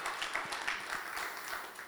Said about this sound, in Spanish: Porque ella es la primera que aplaude y después todo el mundo le sigue.